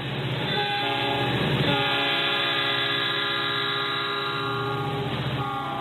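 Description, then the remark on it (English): A passenger train on Elizabeth May's Green Party of Canada whistle-stop campaign tour rolls past, its horn blaring loudly and almost continuously with a couple of brief breaks, over the steady rumble of the cars. No one speaks. “Meanwhile, Elizabeth May recently began a campaign tour by train, opting for a more green approach, unlike the aircraft used by her political opponents.”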